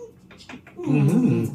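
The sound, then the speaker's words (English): A puppy named Bueller whimpers in a drawn-out, wavering whine that rises and falls in pitch, coming in loudly after a faint, scattered opening. “I mean, the puppies' opinions also count.”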